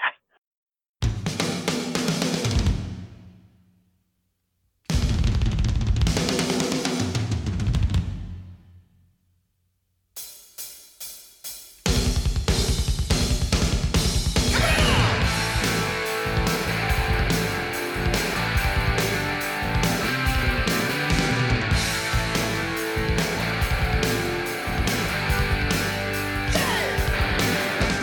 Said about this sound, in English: Here's the drum intro to that.